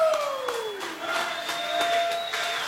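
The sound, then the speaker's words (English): Crowd applause and cheering for the Miller Lite wash away toast, a steady, dense wash of clapping, with a few sustained whistle-like tones, one gliding downward, running through it for the whole stretch. “Hey, give me a round of applause for the Miller Lite wash away toast.”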